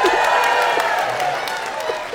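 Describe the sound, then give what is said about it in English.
An audience cheers and applauds for Baird Family Orchards in a steady, dense wash of crowd noise that holds at an even loudness for about two seconds, with a few scattered shouts rising out of it. “We are allowed to get you to cheer for something that you don't know what it is.”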